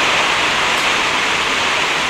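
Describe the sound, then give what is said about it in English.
Hail falls in a steady, dense hiss of countless tiny impacts, loud and unbroken for the whole moment, with no voices over it. “The hail? It's hail, yeah.”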